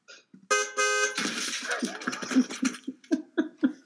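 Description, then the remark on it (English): A loud car horn blares in two quick honks, then a noisy crash bursts in as a sound effect of somebody being hit by a car, followed by rhythmic bursts of laughter as the clatter fades. “Somebody got hit by a car there.”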